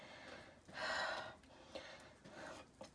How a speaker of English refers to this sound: And sorry for the heavy breathing, but I'm really hot. It's a nice spring evening, pretty warm, and the stove is working at full capacity.